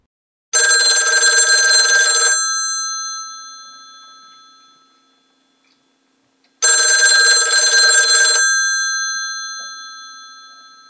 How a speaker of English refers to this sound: The phone in the kitchen abruptly rang.